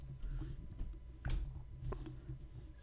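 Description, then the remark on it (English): A handful of soft, irregular clicks from a computer keyboard as someone types in a website address, fairly quiet, over a steady low background hum with no one speaking. “Hang on, I'm typing that in right now.”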